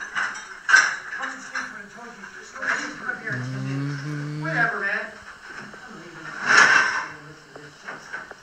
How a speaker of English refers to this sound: Did you notice they left a bunch of that shit on the sidewalk today? Does this sound like a fucking box of cooking utensils? They left outside today.